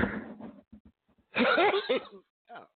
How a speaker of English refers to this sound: Yeah, that's a sneeze, y'all.